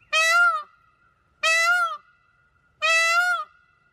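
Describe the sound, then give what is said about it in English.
A peacock calls three times in a steady rhythm, each loud, piercing wail lasting about half a second with short pauses between, with no other sounds. “It is a peacock call.”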